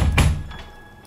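Knocks on a door, three of them: a heavy, loud first thud followed by two much softer taps spaced out over about a second, with no voices.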